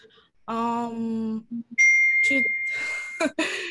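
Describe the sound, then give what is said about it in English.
A phone notification chime rings out as a bright, sustained electronic tone lasting a couple of seconds, fairly loud, right after a short drawn-out vocal sound. “my phone is like, yay.”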